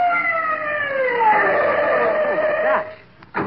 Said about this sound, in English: My gosh, what is the... It's an ambulance. Stopping here.